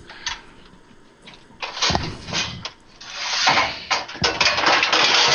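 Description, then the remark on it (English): A metal cookie sheet is pulled out from among other pans, with several loud, bright clattering and scraping bursts over about five seconds and no talking. “I'm getting a cookie sheet out.”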